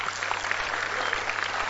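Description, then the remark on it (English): A crowd claps together during a Bible reading, applauding the servants in the passage, in a dense, steady burst of applause, many hands blending into an even crackling wash that holds at a constant level for under two seconds, with no voices. “Clap for the servants.”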